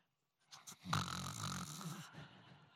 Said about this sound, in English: Completely passed out. Snoring.